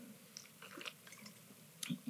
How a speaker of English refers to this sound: I want to start like this tonight, maybe just with a sip of water.